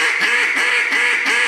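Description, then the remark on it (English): A duck call blown loud, giving a rapid run of about four harsh, raspy hen quacks that blur together with little pause between them, made by opening the throat up while keeping the same pressure and push, and no voices. “I can get real raspy. I mean, extremely raspy by opening my throat up.”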